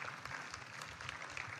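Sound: audience clapping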